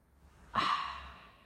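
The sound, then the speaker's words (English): A single drawn-out yawn with a breathy rush of air and a faint voiced tone, then a slow fade. No talking. “If I keep yawning, honestly, I don't know why I'm so tired.”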